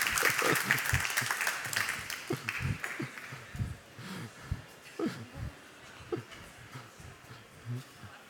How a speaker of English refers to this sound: Thank you. I didn't wait for the applause.